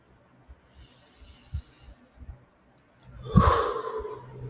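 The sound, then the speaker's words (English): A slow, deep diaphragmatic breath: a faint, airy inhale, a short pause, then a louder, rushing exhale that trails off. No talking. “You don't have to take a deep breath, but I do because I feel like that weird tingly feeling.”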